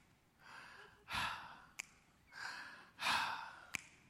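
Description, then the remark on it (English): Deep, rhythmic breathing while getting prepared to go back up for another jump: two full cycles, each a softer drawn-in breath followed by a louder, airy exhale, with a small click after each breath out. No talking. “So the whole time I'm doing this, just breathing.”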